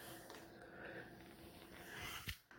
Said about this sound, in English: Sorry, folks. Yawning like a motherfucker. My bad.